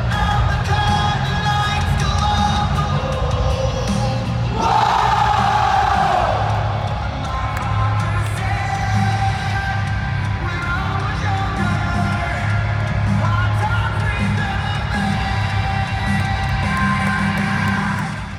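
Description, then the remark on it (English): A large arena crowd at a live show, many of them children, roars continuously, with cheering, whoops and yells layered over a dense wall of noise that swells briefly and stays loud throughout. “I can't believe how fucking hard all the kids around me were going for Cody Rhodes”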